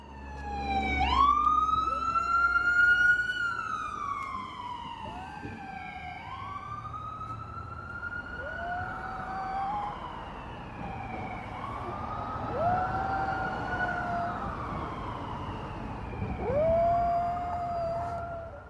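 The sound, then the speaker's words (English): A Havanese dog howls in long, wavering tones along with a wailing siren that rises and falls. The two pitched sounds overlap steadily throughout, with no talking. “One of the sound-making objects on the tape is my dog, and the other, well, it's easily recognizable.”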